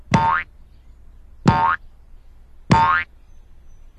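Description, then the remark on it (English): Three loud, springy cartoon boings with a wobbling, rising pitch, repeating at a steady bouncing rhythm about every 1.3 seconds, with a fourth just starting at the end and no voices: Sheila, Mr. Kumalo's pig, bouncing on a tractor tube at Mr. Kumalo's farm. “He rushed over, and there was Sheila, Mr. Kumalo's pig, bouncing on a tractor tube.”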